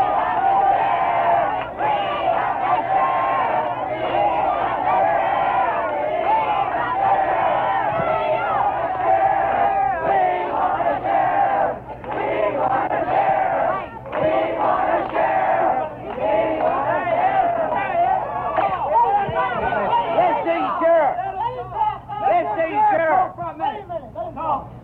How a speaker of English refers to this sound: The enraged mob broke into a run. It, too, was headed toward the jail,